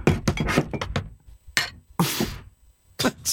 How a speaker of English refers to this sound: You never know when a cough's going to come on or you need to like do something loud on your desk or something. Just like bang some mugs around. This is the stuff you would be hearing.